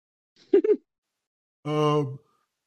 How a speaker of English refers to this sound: My bad. I was yawning.